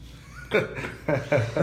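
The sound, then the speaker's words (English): A raspy, phlegmy smoker's cough, imitated by a voice: four or five rough hacking bursts in a quick, uneven rhythm, fairly loud. “But yeah, listen to your cough.”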